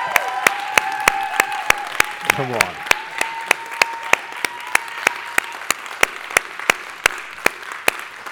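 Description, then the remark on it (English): A church audience claps on Father's Day to show appreciation for the fathers, in a steady, even rhythm of roughly four beats a second, with sustained tones and faint voices humming underneath before the clapping carries on alone. “So you guys, just show them how you appreciate them.”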